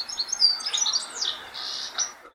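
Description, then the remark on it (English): A goldfinch sings a quick, bubbling run of high, liquid twitters and trills, notes tumbling together without pause before ending in a short buzzy phrase; no voices are heard. “I managed to record this little clip of one singing recently.”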